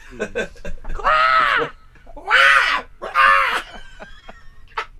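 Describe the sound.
A crow caws three times, loud, harsh drawn-out calls spaced about a second apart, with a few shorter rough notes before them and a brief click at the end.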